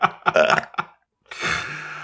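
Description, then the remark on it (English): A burp sound effect played after someone is eaten by piranhas in a piranha tank, fairly loud: a choppy, guttural burst, a brief silence, then a longer, raspy belch trailing off. “They also, like, if someone gets eaten by piranhas, it's like, yeah. Burps.”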